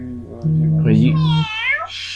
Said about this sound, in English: That's Clunky's message. Meow.